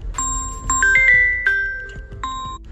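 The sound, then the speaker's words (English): A phone being used to record rings with an incoming call: a melodic, chiming ringtone, a bright run of bell-like notes stepping up and down in pitch, loud and clear with no talking over it. “When you use your phone to record things, you sometimes get phone calls.”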